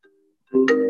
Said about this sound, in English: Who's phoning you? Or is that like your wake-up alarm? Yeah, wake-up alarm.